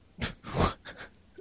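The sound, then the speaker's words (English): A dog having a nightmare whimpers and huffs in a few short, muffled bursts, breathy and uneven, with a faint high whine at the end. It is fairly quiet, with no talking. “These dogs having nightmares and shit.”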